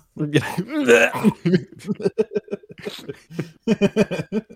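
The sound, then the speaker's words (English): A harsh, raspy throat clearing rasps out in a short burst near the start, followed by a stretch of quick, choppy talking. “Let me clear my throat.”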